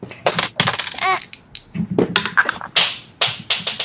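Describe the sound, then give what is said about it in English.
Two dice clatter and rattle across a hard surface in a series of sharp, bright bursts, several rolls tumbling one after another as players roll initiative in a game, with no talking. “So the way initiative works is everybody rolls two dice and adds them together.”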